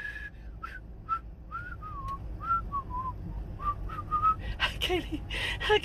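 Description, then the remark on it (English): A person whistles a lilting song melody in short rising and falling phrases, moderately loud over a low background rumble, trailing off into breathy, noisy sounds at the end. “I can't even whistle no more.”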